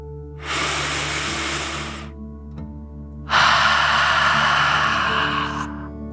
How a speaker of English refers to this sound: Breathe in through your nose, filling up your lungs, and then out through your mouth, imagining you are breathing fire like a dragon. Ready? Deep breath in and out.